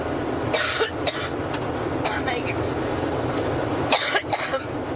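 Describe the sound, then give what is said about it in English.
Hillary Clinton coughs repeatedly on a plane in harsh, raspy bursts, several in quick pairs, with a steady rumbling hum underneath and a brief spoken exchange between the coughing fits. “Hillary Coughs Up A Lung”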